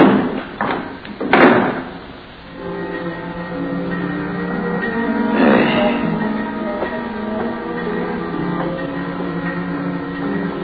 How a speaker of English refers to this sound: And unhurriedly, he pushed the sliding slab into the compartment and closed the door marked 12. and turned the knob that held it shut.